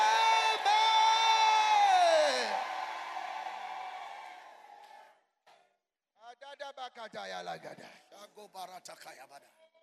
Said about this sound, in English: In the name of God the Father, God the Son, God the Holy Ghost, shout out amen like a thunder.